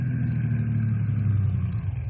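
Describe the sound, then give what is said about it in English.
A car engine hums steadily with a deep, low rumble, growing slightly fuller as the vehicle approaches a rangers' roadblock on a highway. No voices, just the continuous motor drone throughout. “Here come car now, Bill.”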